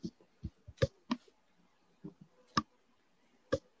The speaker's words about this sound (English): I was typing. I was doing a lot of stuff.